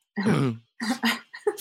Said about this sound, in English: Sorry. Why are you coughing? Why are you bringing phlegm up for me? Sorry.